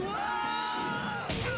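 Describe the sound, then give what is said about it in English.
A voice imitates a cartoonish 80s-style comedy falling yell: one loud, sustained, strained cry held for over a second, ending in a harsh, breathy burst. “But the point is, they both fall, and the way they yell, it's very comedy, like an 80s-style comedy yell.”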